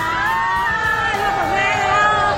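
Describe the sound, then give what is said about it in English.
A street crowd in Hanoi cheers as President Trump arrives at his hotel for his summit with North Korea's Kim Jong-un, a steady, loud roar of many overlapping voices, with higher shouts and whoops rising above it throughout, never dropping off. “Crowds gathered on the streets.”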